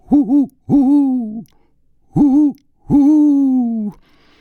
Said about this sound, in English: The owls.